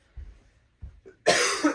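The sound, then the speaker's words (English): A person with a cold coughs: two soft, muffled throaty hacks, then a loud, harsh, breathy cough burst that fills the last half second. No talking. “I might be coughing through this, still fighting this cold, but that's okay.”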